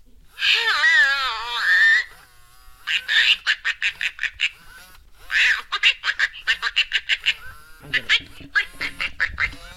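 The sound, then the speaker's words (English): An Aflac talking toy duck makes a wavering, whiny call, then quacks in fast, loud bursts of short quacks, with brief pauses between the runs and no one talking. “Take three, my special Aflac Duck. So Quacky, please tell us how you're feeling today.”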